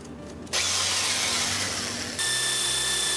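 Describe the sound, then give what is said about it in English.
A power drill whirs loudly and steadily, its motor pitch shifting slightly as a one-inch bit bores into wood for the sliding bolt of a lock, starting abruptly after a brief quiet moment with no talking. “Now we're gonna drill the bore for the bolt, the sliding bolt that's gonna come into the lock with a 1 inch right here.”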